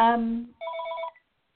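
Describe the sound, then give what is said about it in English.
An electronic phone ringtone sounds: a brief low buzzing tone, then a higher warbling trill lasting about half a second before cutting off. “Oh, sorry, guys. I didn't take the phone out.”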